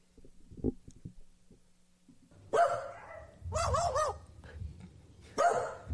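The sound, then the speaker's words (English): A magpie kept in a house mimics a dog's barking with several loud, harsh bark-like calls in irregular bursts, some with a wavering, warbling tone, and no talking. “That barking you hear right here is the magpie.”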